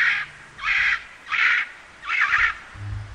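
A kakapo gives four harsh, raspy squawks in a steady rhythm, each about half a second long, loud, with a faint low rumble near the end.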